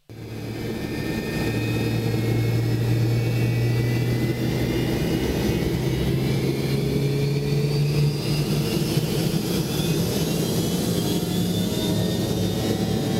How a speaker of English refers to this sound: Listen to that sound of the Pratt & Whitney. Nice.